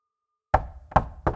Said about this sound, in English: A knock comes at the door.